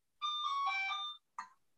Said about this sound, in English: I hold on a second. Sorry. That's your phone.